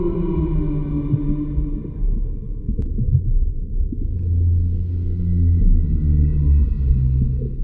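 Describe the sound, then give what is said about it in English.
Humpback whale song: long, low, mournful moans and drawn-out tones sliding in pitch over a deep, steady underwater rumble, continuous throughout with no talking. “that's a humpback whale, known across the world, and at least in Star Trek the universe, for their complex, mournful, low-pitched songs”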